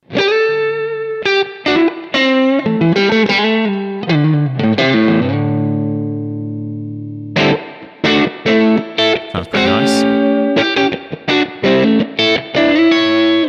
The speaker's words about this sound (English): Yeah. Let's grab this one. This is from the crunch section. It's called British Tweed Deluxe.